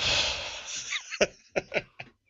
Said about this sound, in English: Can you not do the deep breathing down the microphone?